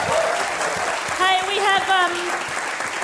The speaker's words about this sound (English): Can we have a big round of applause for everyone at Howler for hosting us? Woo!